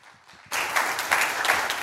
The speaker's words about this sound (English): Come, would you give them a round of applause?